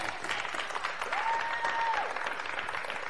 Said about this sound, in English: That was kind of a weak clap. Can we just do that again?